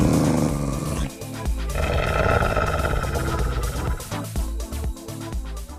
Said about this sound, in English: It was a wolf. Well done.